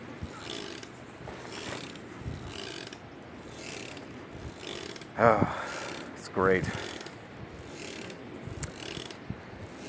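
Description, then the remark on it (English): Repeated wooden creaks and squeaks as a seat rocks back and forth outdoors in a breeze, given a push by hand now and then, with two sharper, louder creaks midway, over a steady hum from an air conditioner on the side of a house and a brief spoken remark. “Feeling the breeze as I rock back and forth. I gotta reach down and give myself a little push.”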